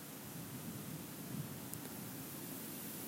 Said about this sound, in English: and you can kind of hear a river in the background,